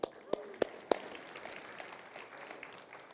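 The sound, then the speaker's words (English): A few sharp, evenly spaced claps ring out at the start, then give way to a steady, fairly quiet wash of scattered applause from a crowd, a round of applause for a couple of men who put something up on the stage. “Round of applause.”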